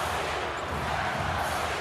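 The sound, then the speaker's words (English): An arena crowd at a Miami Heat basketball game chanting "let's go Heat", a dense, steady roar of many voices that holds at an even loudness for the whole couple of seconds, with no single voice standing out. “Crowd chanting, let's go Heat.”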